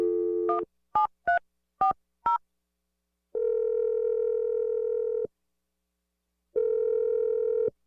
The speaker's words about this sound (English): I'm going to dial the phone number right now so you can make your awkward Tuesday phone call. Here we go.